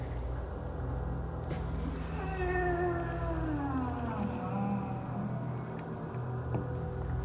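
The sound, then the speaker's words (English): A single drawn-out cat growl, wavering and then sliding downward in pitch over a couple of seconds, heard against a steady low rumble in the background. “And everybody uses their intuition and their perception to try and determine from where the cat is growling.”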